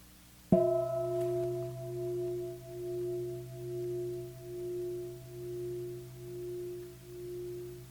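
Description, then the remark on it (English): A single meditation bell is struck once and rings on with a steady, pure tone, its sustained hum slowly pulsing in loudness as it fades gently over several seconds. “Oh, I hear the sound of a bell, as if it's one thing.”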